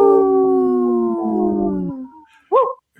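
Wolves give three howls in long, sustained, overlapping tones that slowly slide downward, then fade, followed by a brief, loud, wavering howl at the end. No one speaks.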